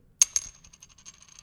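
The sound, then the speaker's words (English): A small metal bottle cap clinks onto a hard surface, striking twice in quick succession with a bright, high ring, then rattles and settles in a series of fading little taps. No voices. “Oh, that's the bottle cap.”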